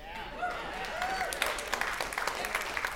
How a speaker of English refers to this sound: Oh, you're clapping, but my church would have been empty.